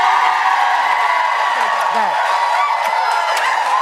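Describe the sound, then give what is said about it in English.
A studio audience, called on for a round of applause for Hoda, applauds and cheers in a steady, dense wash of clapping, with scattered whoops and shouts rising above it for nearly four seconds. “Audience, a round of applause.”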